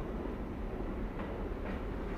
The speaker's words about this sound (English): As luck would have it, a week after reading the article, I was riding uptown on the number 6 train, and at the Union Square stop